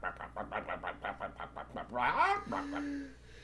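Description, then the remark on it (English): A voice actor imitates a chicken: a quick, steady run of about a dozen clucks, then a rising squawk and a held, drawn-out note to finish. Fairly loud, with no other sounds. “Yeah, but they didn't use chicken sound effects. They just made really shitty chicken noises.”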